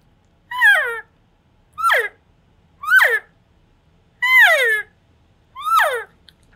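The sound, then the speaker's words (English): Five soft elk cow mews, each a short, high, whiny call sliding downward in pitch, spaced evenly about a second apart with quiet between them and no talking. “Nothing real loud, nothing real fancy, just boring old cow mews, nice and soft.”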